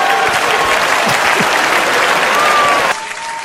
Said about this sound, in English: Yo, man, big round of applause there for Paul Mooney, dude.